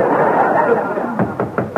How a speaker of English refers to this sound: Someone at the door must be Daisy, my fiancée.